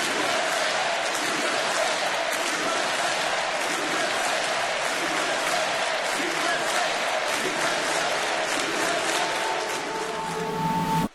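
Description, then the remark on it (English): A large crowd at a Donald Trump speech chants in unison amid applause and cheering after he says "In America, we don't worship government. We worship God," a loud, dense roar with a steady rhythmic pulse that holds for about eleven seconds before cutting off. “The crowd unironically responded by chanting,”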